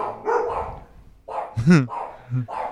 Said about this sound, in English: And the dogs are not going to stop barking until this gets solved.